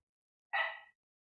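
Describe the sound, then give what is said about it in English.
A single short, sharp bark from one of the speaker's dogs, lasting under half a second and surrounded by silence. “I'm sorry, my stupid dogs.”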